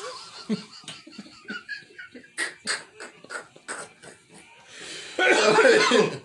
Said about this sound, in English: Whoa, my cough's from the shit.